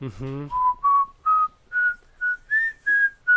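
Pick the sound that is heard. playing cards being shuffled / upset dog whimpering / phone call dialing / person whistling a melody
person whistling a melody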